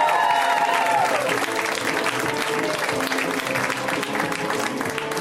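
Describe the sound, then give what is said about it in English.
Loud, sustained applause from a comedy show audience welcoming a comedian to the stage, dense clapping filling the whole stretch with a few whoops and cheers rising over it early on before settling into steady clapping. “Guys, give it up”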